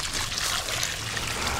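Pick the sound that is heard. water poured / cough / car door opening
water poured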